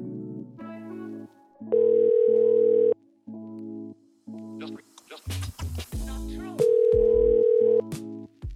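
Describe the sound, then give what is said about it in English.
A telephone call to the speaker's father: a dial tone gives way to a steady pattern of repeating electronic ring pulses over a line, with two longer, louder tone bursts and a short burst of muffled voice midway. “Why don't we try to get my dad on the phone?”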